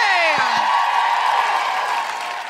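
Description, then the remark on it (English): A loud, steady wash of audience applause with cheering at a show at Vicar Street, a high falling whoop rising above the clapping at the start before the crowd noise carries on evenly and tapers slightly at the end. “And can we have an enormous, enormous round of applause for our incredible musical guest,”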